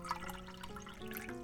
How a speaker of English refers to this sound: Oh. Shall I pour you a cup? Yes, thank you.